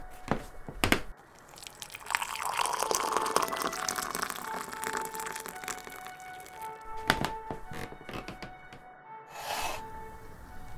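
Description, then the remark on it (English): Liquid pours from a pot in a steady stream, framed by sharp taps and clinks of crockery and a few soft thunks, with no voices. “please pour us another pot, and then will you leave us in silence so that I may talk with our newest members?”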